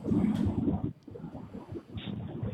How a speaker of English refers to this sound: I think he's just got the window open as he's driving.